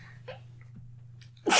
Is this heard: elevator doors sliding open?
no